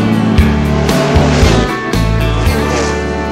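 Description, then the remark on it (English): A car engine starts and revs loudly, its deep rumble rising and falling in bursts over a few seconds with no one talking. “So let's fire up that big old engine and hit the gas.”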